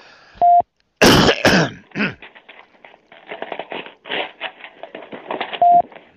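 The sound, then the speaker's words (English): A couple of sharp coughs followed by a long stretch of rough throat clearing, bracketed by short electronic beeps at the start and end. “I'm going to have to mute myself here 1 second so I can cough.”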